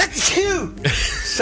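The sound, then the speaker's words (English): A sudden sneeze bursts out amid conversation, a sharp explosive puff followed by brief spoken words. “Bless you, bless you.”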